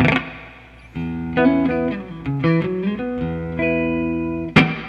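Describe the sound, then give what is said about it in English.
An electric guitar plays a short melodic phrase through a reverb effect, each note ringing out and smearing into the next, before a sudden bright strum near the end. “Okay, so basically, like here, I'm gonna turn on this reverb so you can hear it.”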